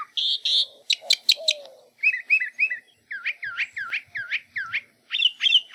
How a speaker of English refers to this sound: One of the most interesting things about mockingbirds is that they can learn hundreds of different songs and often mimic the sounds of other species of birds, as well as frogs, crickets, dogs, car alarms, and squeaky gates.